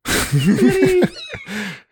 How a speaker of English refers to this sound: Kitty! Oh my gosh.